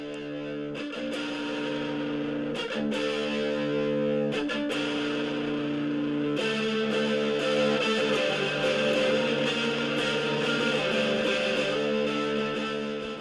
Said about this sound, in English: I don't know, that's maybe not the greatest sound sample of it, but it's got some really good tones to it. I do like those Seymour Duncan pickups.